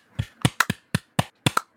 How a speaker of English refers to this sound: You look at the timeline, the claps are all over the place. Clearly.